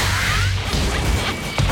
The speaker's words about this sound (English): This is the big super cannon that's firing the police car, and it hits at about 45 feet and starts rolling. It's not just another car rolling like you usually see.